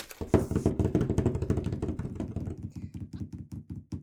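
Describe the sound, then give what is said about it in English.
A rapid drum roll tapped by hand on a tabletop before the winner of a Die Hard Dice competition is drawn, a fast steady stream of dull knocks that starts loud and gradually eases into slightly spaced taps. “And drum roll.”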